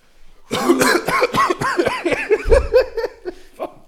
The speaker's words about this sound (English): I tilted my head back. I'm going to cough all over everyone. I covered my mouth.